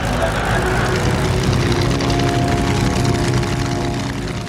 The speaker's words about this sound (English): The actor did a series of twists and turns in the single-engine plane.